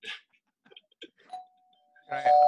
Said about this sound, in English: I hear the doorbell, man.